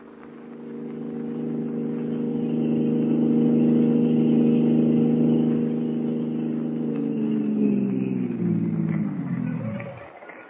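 A car engine hums steadily at a constant pitch for several seconds as the car is driven, then slows, drops in pitch and cuts off near the end. No one speaks.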